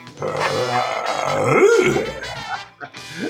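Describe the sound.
A man's voice growls in a low, gravelly, cartoonish way like Scooby-Doo, rising into a throaty warble mid-way, then trails off with a short second grunt. It's a human voice imitating a dog.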